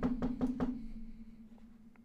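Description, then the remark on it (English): Four quick, evenly spaced knocks on a door, fairly loud, over a steady low hum that lingers after the knocking stops. No one speaks. “You hear a knock at your door.”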